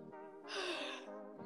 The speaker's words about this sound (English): I'm pacing around my room right now because I usually do that, but I haven't like worked out in like a year, and I'm like very out of breath. So if you hear my heavy breathing, I heavily apologize.